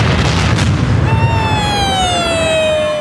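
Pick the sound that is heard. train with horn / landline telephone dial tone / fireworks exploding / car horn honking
fireworks exploding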